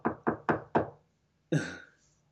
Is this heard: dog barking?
no